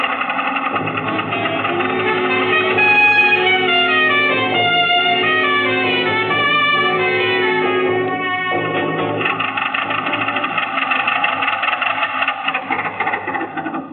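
A car engine runs continuously, a steady mechanical drone with a buzzing, whirring tone whose pitch rises and falls slightly as it revs, with no voices over it.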